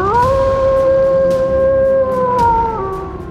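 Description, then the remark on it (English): A wolf lets out one long, loud howl that swoops upward, holds a steady wavering pitch, then slides down and fades, with a low rumbling backdrop underneath. “howled with joy.”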